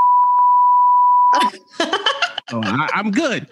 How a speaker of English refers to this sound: But it just sounds like you're bleeping as if you was cussing. That's what it sounds like to us.